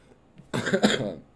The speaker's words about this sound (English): Oh my goodness. I coughed away from Kinger for everybody on the mic.